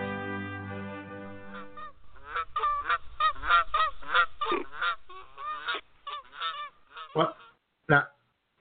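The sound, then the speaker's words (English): People imitate quacking ducks with a loud, rapid run of nasal honks and squawks. A sustained droning tone comes first, then the calls grow sparser and end in a few separate blasts. “Hey, why you guys sound like love-making ducks at the end of my segment anyway?”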